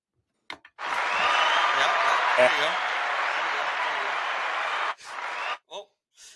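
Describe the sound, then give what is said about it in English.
A burst of clapping from a small group fills about four seconds, dense and steady, with a few whoops mixed in, then fades as a voice starts talking. “Let's get a round of applause going here.”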